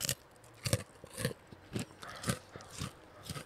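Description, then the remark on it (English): Crunchy snack crackers being munched in a game of guessing chip types by taste, with crisp, crackly chews coming in a steady rhythm roughly twice a second, and no talking. “Munch them. 3, 2, 1.”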